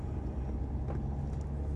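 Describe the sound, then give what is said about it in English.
A car's low, steady rumble fills the cabin as it rolls over an uneven cobblestone surface, with faint bumps and rattles riding on the continuous road noise. “Well, it's shifting because of the bumps, I think. Right, because of the cobblestone.”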